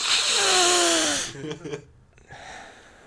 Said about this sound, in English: I'm going to sniff it. That salt. Like, really? That salt? The truffle salt?